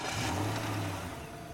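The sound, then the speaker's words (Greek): A car engine starting and revving, a steady low rumble that swells briefly then settles, continuous for the whole moment, with no voices; a man is bringing the car to the entrance of his house a little after 4 a.m. “Αρπάζει τα κλειδιά του και πηγαίνει στο αμάξι για να το φέρει κοντά στην είσοδο του σπιτιού του.”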